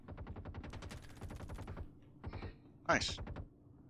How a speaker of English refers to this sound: Gunfire coming in. Yeah, we have incoming gunfire.